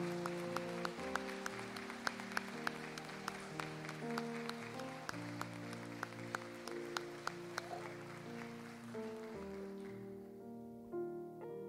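An audience claps in a steady rhythm over sustained, organ-like chords that shift pitch every few seconds; the claps thin out near the end as the music carries on.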